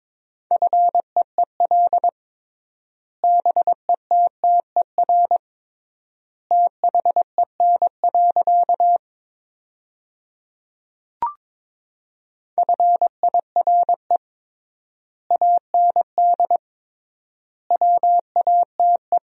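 Morse code at 22 words per minute sending sentences from the top 400 words with triple word spacing: a single steady mid-pitched beep keyed into quick short and long pulses, grouped into words separated by long silent gaps, with one brief click midway.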